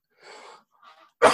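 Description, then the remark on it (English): A sharp cough bursts out at the end, preceded by a couple of soft, breathy rasps. No one speaks. “I keep coughing.”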